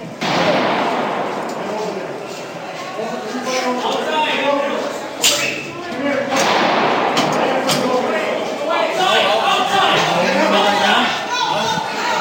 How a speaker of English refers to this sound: There's a bunch of gunshots.